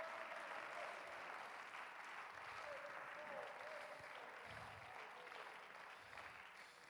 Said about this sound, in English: Somebody clap their hands and give God some praise.